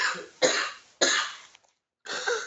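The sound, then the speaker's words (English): A person coughs three times in quick succession after physical exertion, loud, each harsh burst trailing off before the next, with a short pause before the last one; no talking. “Yes, I'm just coughing a lot because that was physically strenuous.”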